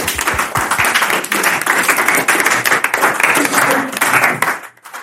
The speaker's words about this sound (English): You did it. Round of applause.